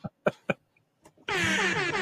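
Three short, punchy bursts give way to a long, loud, blaring air horn blast that holds steady until the end, harsh with no one speaking.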